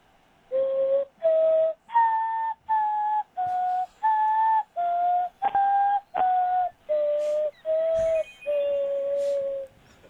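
A pan flute plays a slow melody of about eleven separate breathy, mid-pitched notes with short gaps between them, the last note held longest, with no talking over it. It is a short message on a sports radio show's phone line, an ode to the godfather of sports radio.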